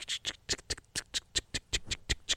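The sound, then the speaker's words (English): An imitation of cicadas' legs walking up and down a big tree in a yard in LaGrange Park, a Chicago suburb: a quick, uneven series of around fourteen dry, scratchy taps, like tiny legs skittering on bark, fairly quiet with no voices. “And then you'd look, and it was the march of the cicadas up and down the tree.”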